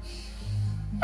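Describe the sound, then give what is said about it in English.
A bird named Khoka sneezes once, a short, sharp, hissy burst at the very end, after a second of low, quiet background rumble with no talking. “I've never heard a bird sneeze, but that's terrifying.”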